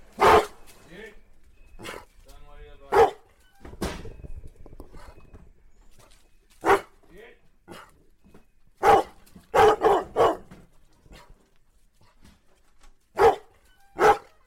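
Three free-running pack hounds, Doberman-Bloodhound crosses (50% Doberman, 50% Bloodhound), bark loudly in sharp, irregular bursts, about a dozen barks across the stretch, with a quick cluster of several near the end and quieter shuffling noise between them.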